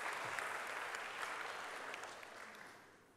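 An audience claps steadily in a dense, crackling wash of many hands, holding strong before gradually tapering off toward the end. No voices stand out.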